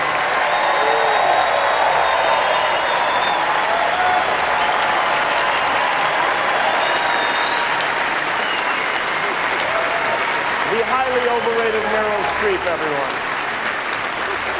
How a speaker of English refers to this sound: Meryl, stand up if you would. Everybody, please join me in giving Meryl Streep a totally undeserved round of applause, will you?